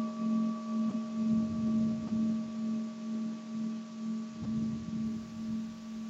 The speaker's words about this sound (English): That was the mindfulness bell that rings every hour on my computer to remind me to take a pause, a few breaths, and remember what's most important.